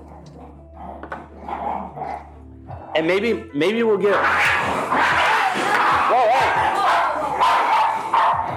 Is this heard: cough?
no